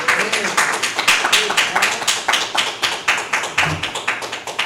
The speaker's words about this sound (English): Let's give God a hand clap of praise for that.